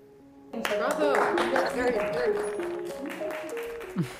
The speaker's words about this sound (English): That was inspiring, you know, when they clapped.